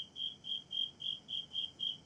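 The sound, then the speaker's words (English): A cricket chirps steadily in a fast, even rhythm of about eight bright, high pulses, clear over a quiet background with no voices. “Shut up, cricket.”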